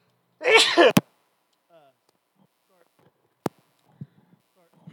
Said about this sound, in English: Sorry. I sneezed and it moved the mic. Oh, my God. So I'm trying to put it all back together.